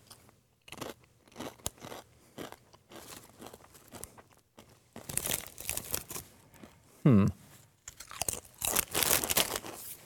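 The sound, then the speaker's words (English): Loud crunching of Blazin' Buffalo Ranch Doritos tortilla chips being chewed, a steady run of sharp crackly bites with brief pauses, and a short voiced sound partway through. “Sorry for crunching into your ears, by the way.”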